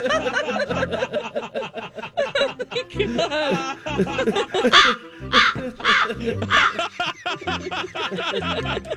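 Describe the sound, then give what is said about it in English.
A loud, busy chorus of jungle bird calls: harsh caws and squawks overlap with chattering, cackling cries, filling the whole stretch without pause, lively. “Oh, birds are coming out.”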